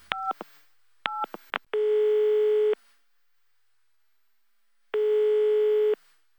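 A few quick electronic beeps, then the ringback tone of an outgoing phone call to the speaker's wife: two steady, buzzy one-second tones separated by a pause of about two seconds, clear with no talking.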